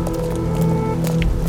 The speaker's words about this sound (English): We've been tramping through pouring rain for half an hour.